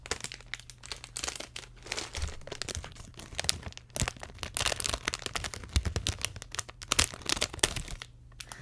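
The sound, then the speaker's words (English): Crinkling and rustling of plastic snack packaging as dog grooming scissors cut it open, a steady stream of sharp crackles and crunches over several seconds, with a low hum underneath and no talking. “I think this needs scissors, hold on.”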